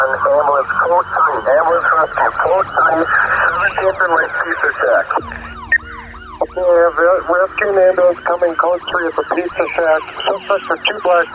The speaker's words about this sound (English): ambulance coming close to the pizza shack.